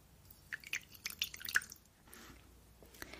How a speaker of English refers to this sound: So I'm just gonna pour a little water.